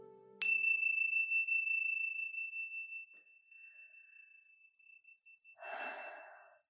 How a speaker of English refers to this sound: Now wiggling your fingers and wiggling your toes when you hear the sounds of a chime, gently coming back into this space.